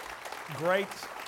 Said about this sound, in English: And I want to give a great big thank you, and I'd like you to give him a round of applause.